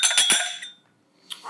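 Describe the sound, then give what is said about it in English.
Several glasses of a high-proof, oak-aged spirit clink together in a toast before tasting, a quick flurry whose bright ringing tone trails off. After a brief silence, one more clink follows. No one speaks. “You guys ready to try it? Yeah. Cheers, boys. Right, cheers, guys. Cheers.”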